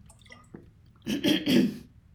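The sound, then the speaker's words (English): A wet sipping sound of a person drinking water, with two or three quick slurps and swallows in about a second, following a brief tap and then fading to quiet. “I'm just going to have a sip of water.”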